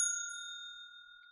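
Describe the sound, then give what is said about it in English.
A single bright bell ding strikes sharply and rings out clearly on its own, its clear metallic tone slowly fading over a second or so with no talking; a spoiler bell struck to signal that talk about a show's ending follows. “I'm going to hit the spoiler bell so that we'll talk about the ending and stuff, but I don't want to spoil it if anybody hasn't seen it.”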